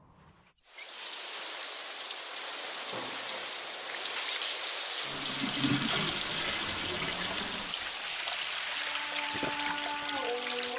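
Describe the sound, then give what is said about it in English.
A shower in a fancy shower booth in a village in Rajasthan bursts on abruptly and keeps running as a steady hiss of spraying water, with faint tonal squeaks appearing near the end. “And there's this fancy shower booth, which a farmer comes, or whatever, a villager comes”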